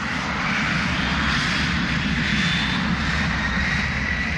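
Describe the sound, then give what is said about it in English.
A steady, loud roar of Boeing 747 jumbo jet engines, continuous and unbroken for the whole stretch, with a broad rushing hiss over a deep rumble and no voices. “First, the Boeing 720 appeared in Irish colours, then the gas-guzzling 707, and finally, the more economical 747s are jumbo jets.”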